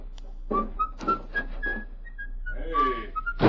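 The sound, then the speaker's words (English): A man whistles a light, wandering tune as he walks away, a string of short rising and falling notes at moderate volume, with some soft thuds and a brief murmur of sound beneath. “Now leave here and whistle as you go.”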